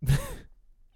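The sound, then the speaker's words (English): A single short, breathy meow from a pet cat called Fox, or Agent Mulder, fairly loud, lasting about half a second before the sound drops away to near silence. “And hold on, I gotta give this cat.”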